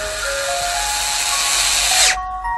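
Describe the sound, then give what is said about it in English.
A power drill whirs loudly and steadily for about two seconds, a bright high-pitched buzz, then winds down abruptly as the motor stops. No voices. “You wouldn't drill through its nose and palate to make room for a rope or a chain.”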